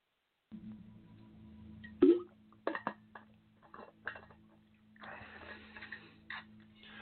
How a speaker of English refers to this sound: So let's see, I need a sip of water.